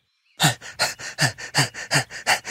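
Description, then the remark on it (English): Rapid, heavy panting breaths, about ten quick huffs in a steady rhythm, loud with no talking, likely a person imitating an animal panting to cool down. “No, I'm panting.”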